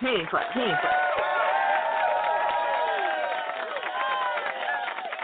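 A large crowd applauds and cheers, many voices whooping and shouting together in a steady, loud roar that holds for about five seconds without letting up.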